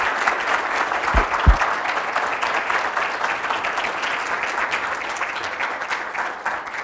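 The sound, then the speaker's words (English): An audience claps steadily for several seconds for the year's fourth annual social entrepreneurship leader as the stage is turned over to them, a dense, even patter of many hands with no voices over it, tapering only slightly toward the end. “Wait, you might regret the clapping.”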